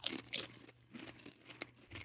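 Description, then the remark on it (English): A crunchy bite into spicy-hot food, then several more crisp, crackly chewing crunches at uneven intervals, fairly soft, with no one talking. “I think we're going to bite it on this one.”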